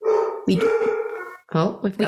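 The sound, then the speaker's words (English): A new pet dog, Ruffy, barks and whines, a drawn-out, wavering howl-like cry followed by a few sharp yips in quick succession. “We got a new dog.”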